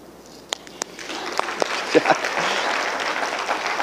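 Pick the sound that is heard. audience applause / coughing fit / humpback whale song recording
audience applause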